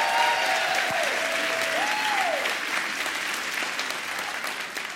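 Sustained applause from a large audience in a church, steady and loud, with a few whistles sliding over the clapping early on before it gradually eases.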